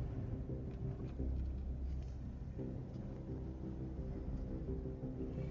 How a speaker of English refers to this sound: Sorry, I was in traffic and I had cars coming at me.